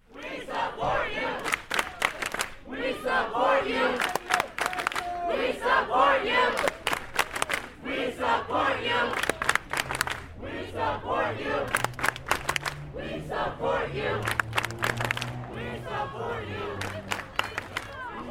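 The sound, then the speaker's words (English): A large crowd of a few hundred East High School students chants in unison at a walkout demonstration on the school's front steps as rain begins to fall. The chanting is loud and rhythmic, with repeated shouted phrases and scattered yells rising over a steady roar of group noise. “a few hundred East High School students walked out of their third period class and gathered on the front steps”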